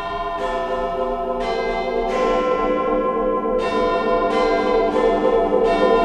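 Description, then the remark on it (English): The clock tower bells of Big Ben in London chime at 9:45 in the morning in a steady sequence of about seven loud, resonant strikes, each ringing into the next with a rich, lingering tone, over the busy morning commute in a cold wind. No one speaks. “I hold tight to an iron bar behind me, fix my gaze on the hands of Big Ben. Behind me, the busy morning commute as chimes strike, 9:45.”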